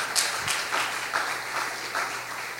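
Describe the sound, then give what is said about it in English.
A church audience applauds steadily in praise of God, a dense wash of many hands clapping at moderate volume with no voices standing out, holding an even level for a few seconds. “Give God praise for some faith.”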